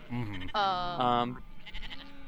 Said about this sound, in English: I hope you guys can hear the sheep noises.